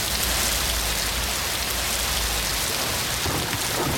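Heavy rain of the rainy season pours down in Cuernavaca, Mexico, in a steady, dense hiss across the whole clip, with a low rumble underneath and no voices.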